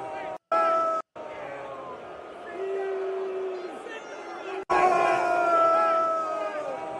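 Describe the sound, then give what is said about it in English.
A large stadium crowd at a New York Giants game at MetLife Stadium boos an Eras Tour advert on the big screen, loudly in a long, sustained, low drone of overlapping voices, with a couple of abrupt cuts early on and a sudden swell of louder booing partway through. “And people were fucking booing it”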